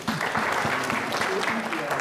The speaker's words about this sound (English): thank you, please, let's clap for them.